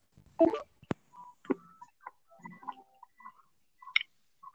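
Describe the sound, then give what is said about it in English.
A quick, irregular series of short electronic keypad beeps at shifting pitches as a phone number is dialed to call someone back, preceded by a rustle and a sharp click. No one speaks. “I don't want us getting cut off mid, so I'll phone you back now.”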